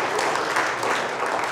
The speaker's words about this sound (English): I want to thank the parents for being supportive of this. Can we give a big round of applause to the parents? Yes.